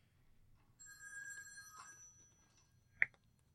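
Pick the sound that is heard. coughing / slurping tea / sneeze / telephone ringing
telephone ringing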